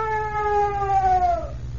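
A strange, terrifying scream aboard a ship empty of captain and crew on a fog-bound night: one long, shrill, siren-like wail that sags slowly in pitch for about a second and a half, then breaks off, over a steady low rumble.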